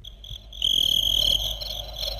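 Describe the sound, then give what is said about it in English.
Steady, high-pitched cricket chirping from an instant audience sound effects machine fills the short stretch, one loud sustained trill standing out briefly over a fainter background chorus, with no talking. “Okay, the crickets, really? That's realistic”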